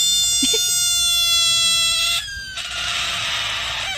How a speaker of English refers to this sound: So a guy heard this noise outside of his house at night and didn't believe what was happening. So he took his phone out and he saw that it was a frog, but this is what the frog sounds like.